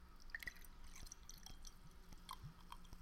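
Soda fizzing as it's poured into a glass: a quiet, steady crackle of tiny irregular pops and bubbling over a soft liquid pour, with no voices.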